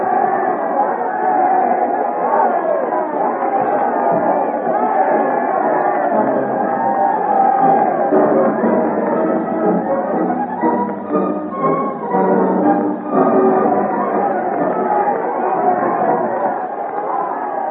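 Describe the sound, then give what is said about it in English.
A large crowd cheers in crowded streets as a royal carriage drives through, many voices blending into a dense, steady din of cheering and chatter that stays loud throughout, with no single voice standing out. “Through the crowded streets, amid the cheering, they drive in the royal carriage back to Boislorier House”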